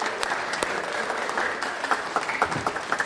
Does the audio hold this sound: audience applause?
yes